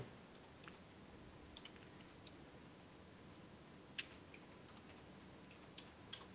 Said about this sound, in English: Oops, sorry. I'm typing that in the wrong place. I was typing in the Skype bit as opposed to the actual map tools.